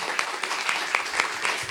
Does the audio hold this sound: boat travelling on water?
no